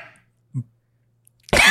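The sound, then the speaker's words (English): A dog lets out one sudden, loud, harsh bark right at the end, after near silence broken only by a soft low thud. “Whose dog was that? That sounded like Bo.”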